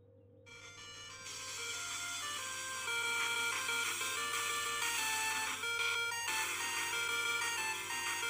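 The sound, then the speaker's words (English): A phone ringtone, an 8-bit version of a theme song from the first season of Jujutsu Kaisen, plays a bright electronic melody of quick sustained notes that starts after a brief silence and stays loud and steady over a low constant hum. “Let me put it on a ring.”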